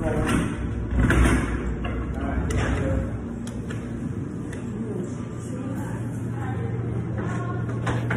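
An elevator moving with a steady low mechanical hum, broken by a few creaks and soft clunks early on, then running smoothly with a faint, constant drone.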